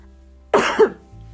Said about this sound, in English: Wow, I need to like clear my throat. Wow, it's a lot of talking.